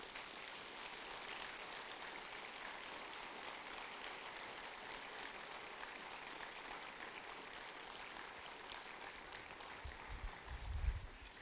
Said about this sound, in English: Would you please give her a round of applause?